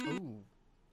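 A short, loud electronic phone ring sounds once, cut off after a fraction of a second, followed by a brief vocal sound.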